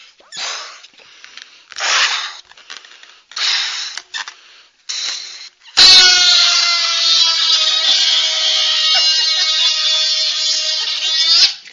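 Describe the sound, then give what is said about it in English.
Five rhythmic, breathy whooshes of air pumping into a balloon give way to a loud, sustained rubbery squeaking and creaking as the balloon is twisted, with no one talking. “I do balloons all over the world. My motto is building bridges of peace one balloon at a time. This is my famous one.”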